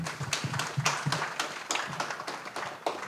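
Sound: audience clapping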